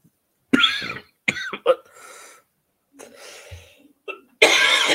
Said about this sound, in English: I cannot shake this cough.